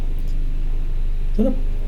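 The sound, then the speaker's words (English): A helicopter flying overhead: a steady low rumbling drone with a faint rhythmic chop running throughout, plus a short tonal blip near the end; no one speaks. “This is a helicopter, isn't it?”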